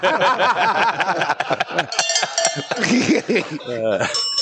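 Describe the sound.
A metallic cowbell clangs a couple of times, its bright tone ringing on briefly, mixed in with several people talking and laughing.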